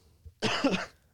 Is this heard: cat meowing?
no